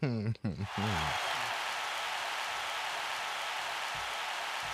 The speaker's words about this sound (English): Bring us in with a round of applause